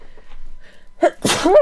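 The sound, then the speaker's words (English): A single sneeze, partly held back: a quiet catch of breath, then a sharp burst of breathy noise that ends in a strained, voiced squeak. Fairly loud, with no talking. “I'm trying to sneeze and trying to hold it in all at once.”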